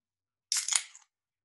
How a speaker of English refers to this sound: I have backed up my recording now with Audacity and a voice memo, but can we get just another clap so that I can sync?